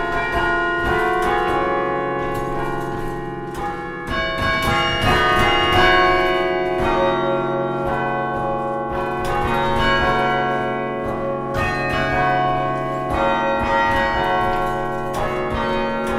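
The Cornell Chimes tower bells ring out a melody, their long sustained tones overlapping in a steady rhythm, loud and resonant with no voices present.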